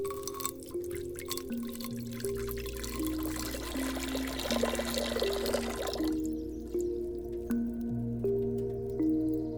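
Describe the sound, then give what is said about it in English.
Water pours steadily into a cauldron, a continuous splashing trickle with drips, under a bed of sustained low tones, then tapers off leaving the drone ringing on. “Water has many lives. It is adaptable, transformative, and ever-moving. First, pour it into the cauldron.”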